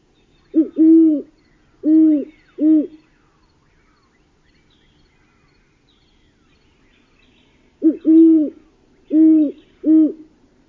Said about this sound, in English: First, the great horned owl, which says, "Who's awake? Who, who?"